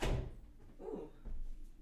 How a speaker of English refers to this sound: Actually, hold that thought. Let me shut the door.